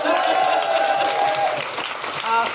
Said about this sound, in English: Ladies and gentlemen, a big round of applause